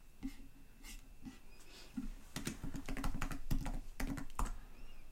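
Rapid typing on a computer keyboard, starting with a few scattered keystrokes and then building into a dense, uneven burst of clacking keys with no voices.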